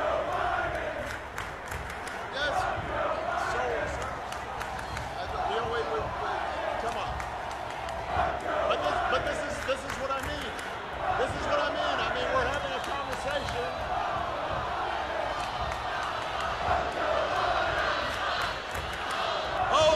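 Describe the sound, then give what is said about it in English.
A large crowd chants "FJB" loudly and continuously during a speech by Obama, a dense roar of many voices with sharp claps and shouts rising out of it, unbroken for the whole stretch. “FJB going off crazy.”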